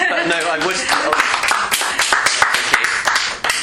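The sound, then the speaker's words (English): Dense, continuous clapping from a group at the end of a talk, many sharp overlapping claps forming a steady applause, with murmuring voices and a little laughter mixed underneath. “So round of applause now.”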